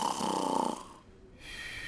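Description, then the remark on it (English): A voice imitates a loud, rattling snore, one drawn-out breath that fades to a brief quiet before a softer exhale follows, alone. “by putting his head on his pillow and starting to snore rather loudly.”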